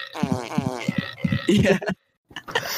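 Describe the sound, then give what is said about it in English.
A quick series of sputtering, buzzy fart sound effects played by an Alexa smart speaker upstairs in a room, loud, with flapping low tones that break off into a brief silence before another burst starts. “I have each part of fart sounds over 1,000 fart sounds memorized.”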